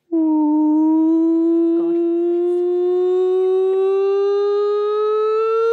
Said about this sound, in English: That is the nonsense siren.